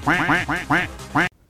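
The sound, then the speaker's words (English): A duck quacking sound effect: a rapid series of loud duck quacks, five or so harsh nasal calls in quick rhythm, ending abruptly into silence. “a.k.a. the Ultimate Duck. Supreme victory! Duck, win.”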